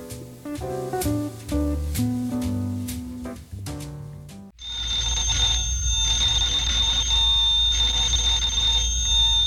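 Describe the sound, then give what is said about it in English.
In the Lum and Abner show, a short musical passage of stepped notes gives way to a loud, shrill telephone bell at the Jot 'Em Down Store, ringing in long sustained bursts separated by brief pauses. “I believe that's our ring.”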